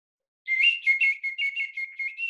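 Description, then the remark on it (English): A small handmade whistle blown in a quick series of short, shrill, warbling toots around a steady high pitch, fairly loud, with no talking. “But yeah, and it makes a little whistle.”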